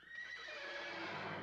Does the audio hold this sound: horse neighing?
yes